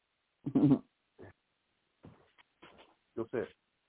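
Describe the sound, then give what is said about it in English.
A dog, woken up when its owner almost put his feet on it, whimpers and groans in several short bursts, the first one loudest, separated by brief pauses of quiet. “I got my dog. I almost put my feet on him.”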